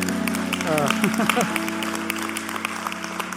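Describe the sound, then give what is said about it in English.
An audience applauds a speaker who has just said he was ordained, with steady, dense clapping that carries through the whole stretch, while a brief voice or whoop rises over it early on. “Getting all these claps”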